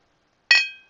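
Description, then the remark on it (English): A single bright clink of glasses touching in a toast, with a clear ringing tone that lingers and fades over half a second, isolated against silence. “Cheers.”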